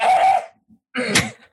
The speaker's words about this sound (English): Excuse me, I'm going to clear my throat.